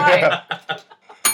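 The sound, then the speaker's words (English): Brief voices and chuckling give way to a single bright bell ding near the end, loud, its metallic ring sustaining clearly. “The titular bell. That's our titular bell.”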